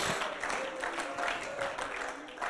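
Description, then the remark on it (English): An audience claps their hands together in praise of the Lord, a steady, dense burst of applause, loud and continuous throughout, with a faint voice murmuring underneath. “Let's give the Lord a hand clap of praise right now.”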